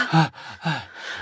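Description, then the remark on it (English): Two loud, exaggerated breaths in quick succession, each a husky, partly voiced gasp, performed as desperate, dramatic heavy breathing like a pop song intro, with a short pause between them. “that shows desperation, the breathing.”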